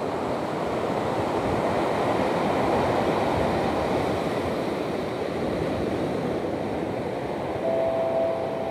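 Steady roar of ocean surf washing onto a beach at Marina del Rey, California, on a windy day, recorded at the shoreline as the water comes in; gusting wind buffets the microphone throughout; the waves swell and recede in a broad continuous wash, no voices present.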